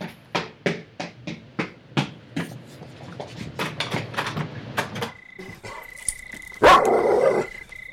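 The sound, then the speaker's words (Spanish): A dog barks loudly in a quick, rhythmic series of sharp barks, then the barking grows more jumbled, ending with a steady high tone and a sudden loud burst. “¡Fuera de aquí, perro sucio!”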